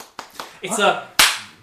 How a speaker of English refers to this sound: The thing is as well, like, because they take in so much air between their hands to get the loud clap, they end up doing more of a slow clap, so it feels, like, more sarcastic than just a